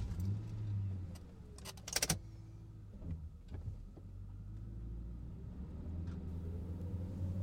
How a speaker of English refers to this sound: Can we get in the car first? It's a little freezing out here.